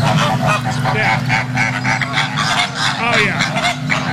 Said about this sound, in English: Now, flamingo mating, I believe this is going to sound like flamingos fighting. Yeah. I believe this is going to be male and female flamingo noises.